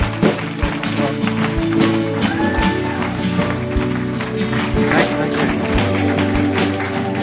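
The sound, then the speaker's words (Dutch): A C3 Church audience stands and applauds steadily for several seconds for Pastor Simon McIntyre, secretary of C3 Church Global, a dense, even wash of clapping with sustained musical tones running beneath it. “So don't we stand, put our hands together for Simon McIntyre.”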